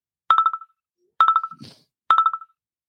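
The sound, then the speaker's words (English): An incoming call's phone ringtone chirps in three evenly spaced bursts, each a quick run of bright electronic pulses that fade at the end. It is loud, with no one talking. “We have a phone call.”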